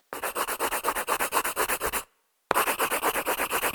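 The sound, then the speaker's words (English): A pencil lightly shades rapidly back and forth across a paper sheet to reveal what was written on the top page, a steady run of dry, raspy strokes that stops briefly and then resumes at the same brisk rhythm. “Just lightly shade a pencil over the sheet to see what she wrote on the top page.”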